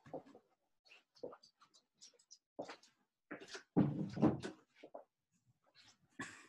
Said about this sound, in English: Sorry. That's all right. The dog just wandered in and left the door open.